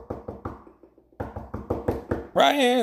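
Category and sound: impact, knocking on a door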